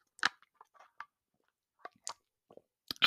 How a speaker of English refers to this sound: Literally just took my meds.